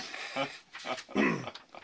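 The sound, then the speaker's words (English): A dog gives three short, whiny yelps in quick succession, moderately loud, with a faint hiss of background noise between them. “Oh, bad dog. Come back with that.”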